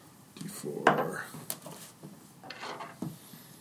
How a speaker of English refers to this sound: Okay. The first one, roll a d4.